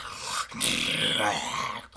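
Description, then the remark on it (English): A voice imitates a deep, guttural chant, rough and growl-like, in two loud sustained stretches split by a short pause, with a brief break near the end. “And just starts immediately chanting in this deep guttural voice.”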